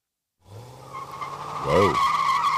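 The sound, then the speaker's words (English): A race car's tires skid and squeal loudly over a steady engine drone, with a sharp rising-and-falling screech near the end as the car slides past. “I wonder if that was Jeff Sharkey, race car driver.”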